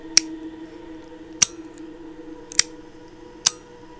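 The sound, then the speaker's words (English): A flameless metal lighter is flicked four times, each a sharp, bright little click spaced about a second apart, over a faint steady hum. “And it also makes this little click sound.”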